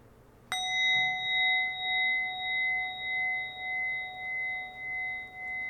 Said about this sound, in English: And then join me in closing our meditation by breathing in three deep breaths to the sound of the bell.